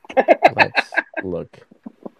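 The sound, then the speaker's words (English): A run of quick, loud clucking bursts followed by a drawn-out squawk and a few softer trailing clucks, clear, sounding like a voice imitating a chicken. “The old chicken hit my dick.”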